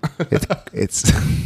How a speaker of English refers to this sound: I've developed a cough.